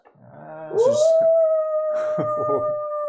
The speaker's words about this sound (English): As you hear a howl in the distance.